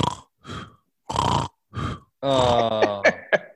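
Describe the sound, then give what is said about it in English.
A person imitates a woman's rapid snoring, as when snoring with her chin in her chest: four quick, raspy snorting breaths in a steady rhythm, then a longer, voiced, gurgling snore that ends in a few sharp clicks. Fairly loud. “She's snoring like with her chest or chin in her chest. And this is how fast the snoring goes.”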